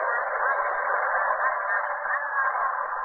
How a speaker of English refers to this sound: We're not sure yet. It may be nothing but those strange patterns of static coming in from the Western Ocean.